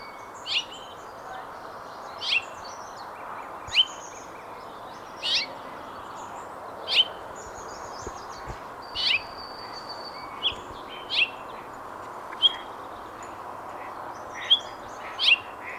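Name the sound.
house finch calls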